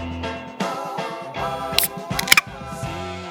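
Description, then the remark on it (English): A cold beer can is cracked open: a sharp metallic snap of the tab, then a second crisp pop with a brief fizzing hiss, heard over a soft, steady tonal background. “I'm cracking a cold one.”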